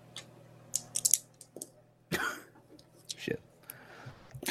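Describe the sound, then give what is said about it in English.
Dice clatter in a few quick bursts of sharp clicks and rattles against a hard surface, quiet, with faint breathy murmurs between them. “Never before have I ever been so wigged out by dice being rolled after silence.”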